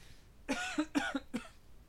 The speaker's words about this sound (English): I got a little bit of a coughing fit.